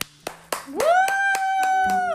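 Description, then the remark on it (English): Someone claps their hands in a steady rhythm, about eight sharp claps, while a rising electronic tone swoops up and holds a bright, sustained pitch underneath. “Let's get the round of applause going.”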